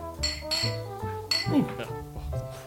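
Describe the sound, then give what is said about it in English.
Several glasses of Payette Brewing Company's Flyline Vienna-style lager, a beer from Boise, Idaho, clink together in a toast, with a few bright ringing taps, while people talk and murmur around them. “Shall we dive in? Beautiful. Yeah. Yeah. Gentlemen, cheers.”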